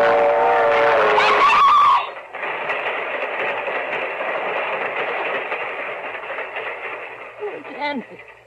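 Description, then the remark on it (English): A train runs along a railway track, opening with a brief loud tonal blare before settling into a steady roaring rumble and clatter that holds for several seconds. “It's caught in the train! Hey, it's not coming down your track. It's coming down this one!”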